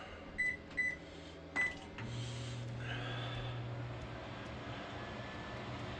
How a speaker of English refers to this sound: The microwave is running. The entire house is still turned on.